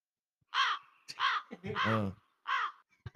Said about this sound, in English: No. That was a very confusing crow.